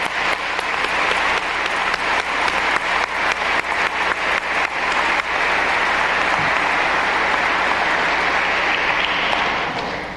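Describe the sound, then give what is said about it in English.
An audience in Ohio applauds the staff of the Apostolic Nunciature, starting with scattered loud claps that quickly merge into a dense, steady roar of clapping lasting several seconds with no voices over it. “I think we should all give them a round of applause.”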